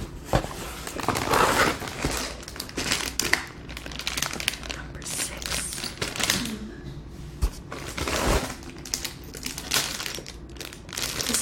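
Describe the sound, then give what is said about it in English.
Plastic bags from a Lego box rustle and crinkle continuously, with uneven bursts of crumpling and shuffling handling noise throughout and no talking. “No, it comes with stickers, but the stickers is crumbled. So I don't know why it's crumbled. There's so many bags.”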